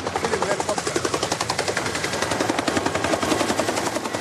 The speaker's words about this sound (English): and he had arranged all those helicopters, and he said to the cameraman, film the helicopter. Go quickly, because helicopter are now coming. Okay. So he gives an order to the camera, and the camera pans and goes to film the helicopter.